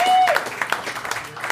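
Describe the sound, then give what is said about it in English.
An audience in a subterranean, unventilated room claps steadily, a dense patter of many hands at moderate loudness, with a brief high whistle-like tone rising over the start before fading into continuous applause. “Get a round of applause for Max Kestenbaum and Mike Friedman, please.”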